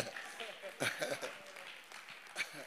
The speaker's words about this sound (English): Give God a clap for free.